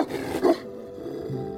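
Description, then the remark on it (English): A large dog, Hades' dog Cerberus, gives a deep, menacing growl that swells into a single loud snarling bark, then fades into a low rumbling tail with no voices present. “But once across the black, rapid waters of the Styx, the dead first confronted Hades' dog Cerberus, who herded them into the gloom.”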